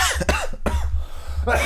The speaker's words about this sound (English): Still coughing.